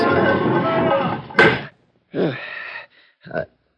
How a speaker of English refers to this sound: Okay, pull the door shut behind you.